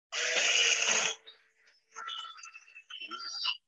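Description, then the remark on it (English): A carbon fiber BlendJet portable blender full of ice runs a short 20-second cycle for a coffee: a loud, harsh, gritty grinding burst for about a second, then a brief lull and a whining motor tone with rattling, uneven pitch. “I've got the carbon fiber Blendjet full of ice, and I'm just going to do a little 20-second cycle here so I can be awake for this.”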